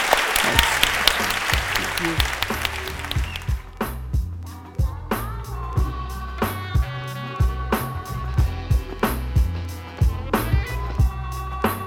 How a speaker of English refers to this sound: Thank you for being such a great conversationalist. I think you will all join me in a massive round of applause.